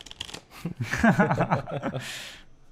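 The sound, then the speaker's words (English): A deck of game cards being shuffled in secret, with a quick riffle of crisp clicks at the start and another papery burst near the end, interrupted by laughter and voices in between. “So what do I do with the cards that you gave me to shuffle in secretly?”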